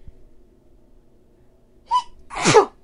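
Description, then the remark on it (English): A single loud sneeze: a short sharp breath in, then an explosive burst of air, with quiet before it and no talking. “Bless you. Bless me.”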